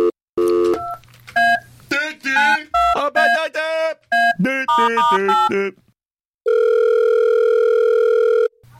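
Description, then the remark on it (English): A quick run of telephone keypad beeps in varying pitches as a call to party planners is dialed, followed after a short pause by one long, steady ringing tone on the line as the call is placed. “Are we going to call these party planners? Let's do it, man.”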